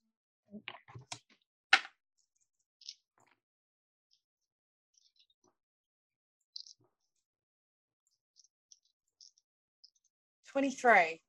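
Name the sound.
five dice being rolled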